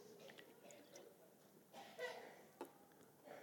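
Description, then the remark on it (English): Someone takes quiet sips of a drink of water, with a couple of soft slurping gulps and small wet mouth sounds against a hushed background. “Time for a drink of water.”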